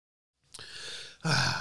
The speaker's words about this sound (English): So, all right, let me get a sip of my Arnold Palmer, clear my throat here a little bit, and then we will kick this off